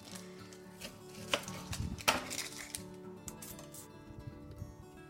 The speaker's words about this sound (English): I'm going to get started now on chopping the onion.